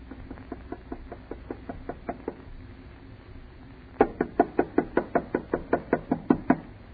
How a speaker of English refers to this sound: Knock harder. I can't. It hurts my knuckle.